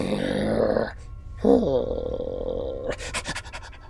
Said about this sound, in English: and that's all you get. Is a sort of intense, high panting... which you think means running. Yeah, I'm hoping means running. Either that or crushed by tentacle.